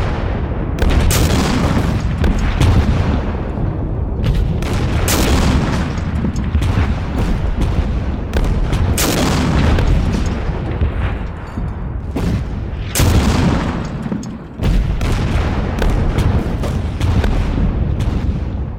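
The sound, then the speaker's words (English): Heavy artillery bombardment, all batteries firing at once, joined by naval gunfire from battleships arrived from Lemnos, pounds continuously, deep booms and blasts overlapping into a dense, roaring barrage with sharp louder impacts breaking through. No voices, just relentless thunder. “Shortly after the artillery kicked off, battleships arrived from Lemnos and began to support the artillery with naval gunfire.”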